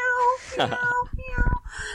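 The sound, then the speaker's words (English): A person imitates a cat's meow, a couple of drawn-out, wavering mews, with some breathy, rough vocal sounds between them. “M-E-W-S, like cat mew. You can if you want. Yeah, you can mew.”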